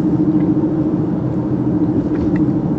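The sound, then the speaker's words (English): A steady, loud low rumble fills the cabin of a moving truck, with a constant engine drone and road noise throughout and no one talking. “You know, I like driving my wife and kid around in this car because I just feel invincible in it.”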